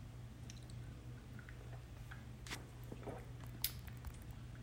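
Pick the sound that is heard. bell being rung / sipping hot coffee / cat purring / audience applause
sipping hot coffee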